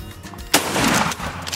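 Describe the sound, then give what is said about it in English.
A single sharp shotgun blast, fired during a hunt at a bird just two steps from the gun barrel, cracks out suddenly after a quiet moment, followed by a loud, broad rumble that slowly decays over the next second. “I mean, what to go from snapping to calling them back in to getting photo bombed, and I shot this bird at 2 steps from my gun barrel.”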